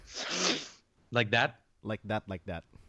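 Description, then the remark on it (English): A single sharp, hissing nasal sniffle, quick, followed by someone talking in short bursts. “It was so funny because every time you would sniffle, it almost sounds like you're doing a line of coke.”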